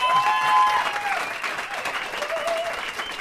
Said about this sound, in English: Oh, well, actually, first of all, how about a round of applause for our panel?